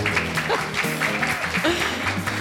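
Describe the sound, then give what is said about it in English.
Audience applause at a live 2020 conference: a dense, steady patter of many hands clapping at once, holding an even loudness throughout with a faint murmur of voices mixed into the crowd noise. “The books on my right don't usually clap.”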